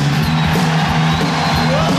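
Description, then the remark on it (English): A concert crowd shouts along with the band, roaring in a dense, continuous wash of noise, with a steady low musical drone from the band sustained underneath for the full two seconds. “Do a little bit of shouting along with the band here.”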